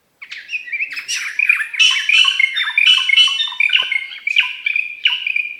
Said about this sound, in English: This glossy black bird lives in tropical forests in southern and southeastern Asia. Both males and females have a pair of long, spatula-shaped tail feathers that give the species its common name. Here's a greater racket-tailed drongo singing.